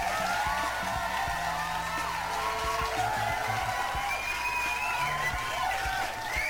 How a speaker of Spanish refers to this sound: No hay pedo, ella es Kali Carter. Claro que sí, un aplauso.